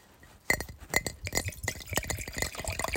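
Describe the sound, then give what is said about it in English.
Wine pours into a glass, starting with a couple of sharp glassy clinks and then a run of irregular splashing glugs and drips, with some wine dripping over. No one speaks. “Oh, I dripped some.”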